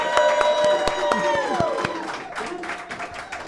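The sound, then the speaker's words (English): An audience at Dogberry Brewing bursts into loud applause for the two men behind the brewery, with sharp, dense clapping, while whoops and cheers rise and fall over it before the crowd noise gradually thins out. “And you can, of course, give them a big round of applause.”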